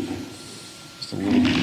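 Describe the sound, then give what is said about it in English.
A deep, rumbling lion roar, used as the low-frequency element of a creature's final roar and for its attack, swells up after a quieter, growling start and grows loud in its final half-second. No voices accompany it. “So hear how it'll be the low frequency element of the final roar.”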